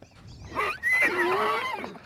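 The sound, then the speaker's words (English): A horse vocalizes, played from an online video of horse sounds, in a loud, drawn-out cry lasting over a second, its pitch wavering and sliding downward before trailing off, with a faint hiss beneath and no voices. “Oh my gosh, I did horse sex sounds, and I somehow got onto horse sound HD horse porn.”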